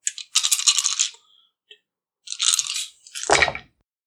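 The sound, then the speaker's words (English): A dice pool is rolled for a tabletop game: dice rattle in two bursts, a dense clattering shake lasting about a second, a faint click, then a second rattle ending in a brief tumbling settle. No one speaks. “Yeah, so then I'll roll them.”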